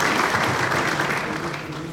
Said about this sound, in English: Can I get a round of applause?